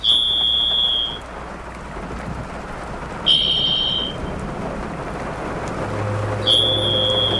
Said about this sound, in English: The sounds of Ixorius niveus, the varied thrush. The male varied thrush is blue-gray on the back, with a red breast like its close relative, the American robin.